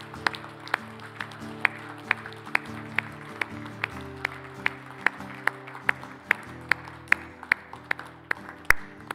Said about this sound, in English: Let's just give the Lord Jesus Christ a hand clap today. Amen.